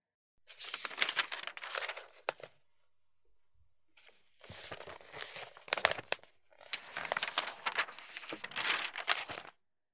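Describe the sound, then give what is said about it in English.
A newspaper, its classified section being handed over, rustles and crinkles in three bursts of dry paper noise, separated by short pauses, loud, with no voices. “Here, take the paper.”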